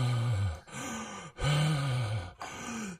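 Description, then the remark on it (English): Heavy, labored breathing with voiced grunts from a champion looking at his damage, four strained breaths in a steady rhythm, loud, with no speech. “Our heavily breathing champion looks at his damage and talks.”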